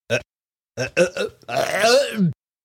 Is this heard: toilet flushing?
no